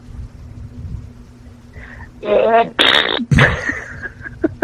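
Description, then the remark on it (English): Someone blows a loud, buzzy raspberry with their lips, imitating a fart in a few sputtering bursts over about two seconds after a quiet lead-in. “Can you do, now, can you do that and fart at the same time?”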